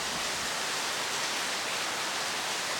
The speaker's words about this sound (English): Don't want to shout against the rain. It's quite beautiful. Perhaps we meditate a little bit more, as long as it is so heavily raining.